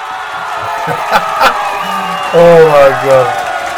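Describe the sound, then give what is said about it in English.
A crowd cheers and whoops steadily for a few seconds, a dense wash of voices with a couple of sharp claps early on and louder rising shouts toward the end. “Cheer me if you agree.”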